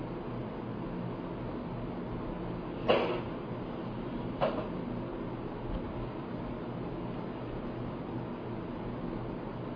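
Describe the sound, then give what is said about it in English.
A door pops open with two sharp mechanical clacks about a second and a half apart, standing out clearly against a steady, hissing background with no voices. “Okay, the door pops open.”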